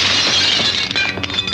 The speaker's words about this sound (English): And then she does an amazing thing. Yeah. And she just grabs something, smashes the mirror. Very, very cool. Yeah. Very, and that feels like an explosion.